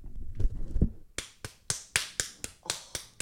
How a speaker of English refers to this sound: She's smacking herself. I think you can probably hear it through her mic.